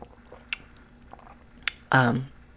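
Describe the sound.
Someone sips tea: two small wet slurping clicks over a quiet background, then a louder, brief voiced gulp near the end.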